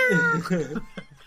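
A male cat meows twice in quick succession, drawn-out and wavering, then gives one short, softer chirp. It sounds fairly loud, with no talking.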